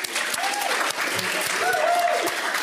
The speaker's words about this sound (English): All right, so in that case, I will first of all thank my panelists so much for joining us. Please join me and give them a round of applause.